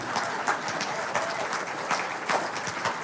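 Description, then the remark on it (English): An audience claps steadily for about three seconds after a poem is read, a dense patter of many hands with small swells in loudness and no voices rising above it. “You may clap.”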